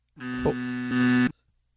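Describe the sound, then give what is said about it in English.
A single loud, harsh buzzer blares steadily for about a second, a rich droning tone with many layered harmonics, then cuts off abruptly into silence. “Can I get the buzzer, please?”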